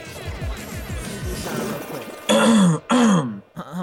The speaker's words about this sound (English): Your boy clearing his throat.